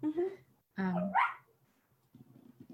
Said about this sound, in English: That's my puppy. You hear the puppy dream? That was funny.